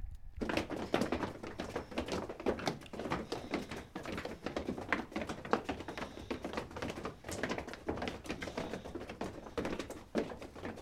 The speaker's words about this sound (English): And then we have the crowd walking.